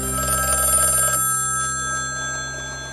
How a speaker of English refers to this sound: I remember the phone, the black phone with numbers. I still hear the ringing. The very first telephone in Nestiona was in Natan's store.